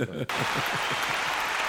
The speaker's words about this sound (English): And let's get his brother a clap, man.